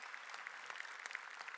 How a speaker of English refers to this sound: like the giant round of applause that this man deserves.